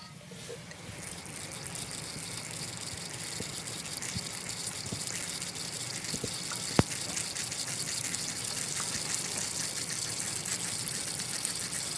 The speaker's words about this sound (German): das hört sich dann gar nicht an, weil es läuft halt durch den Schlauch direkt in den Boden des großen Topfes. Vielleicht kann man noch ein kleines Geräusch aufnehmen.